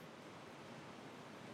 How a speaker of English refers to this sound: That's a lot of rain. we'll just go on. I don't think I've ever heard it rain that hard in here.